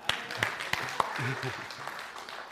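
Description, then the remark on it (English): An audience claps in a steady patter, with a few sharper individual claps standing out, for speakers who gave messages on the letter to the Ephesians. A voice murmurs briefly underneath partway through. The clapping stays at a moderate level. “Should we clap for them?”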